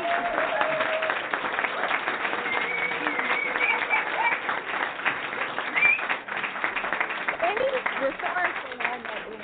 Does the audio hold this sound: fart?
no